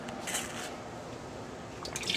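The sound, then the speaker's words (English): Water splashes steadily out of a coffee mug for about two seconds, a continuous liquid pour with a few brighter trickling spurts toward the end, while iced coffee is being made. “Let me get the water out of my coffee mug.”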